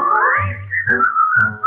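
A clear, melodic human whistle glides and holds steady pitches over a low instrumental backing as part of a song, carrying a bright tune up front in the mix.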